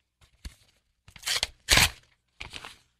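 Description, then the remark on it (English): A paper envelope, the third in a series, is torn open in a few ragged, crackly rips, the loudest in the middle, followed by a softer final tear. No one speaks. “Envelope number three.”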